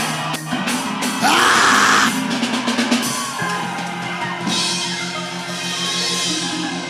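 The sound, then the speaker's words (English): A worship crowd erupts in loud shouting and screaming to God, sustained cheers and yells rising and falling over several seconds, with a steady low musical hum underneath. “Somebody scream. Somebody give God a shout.”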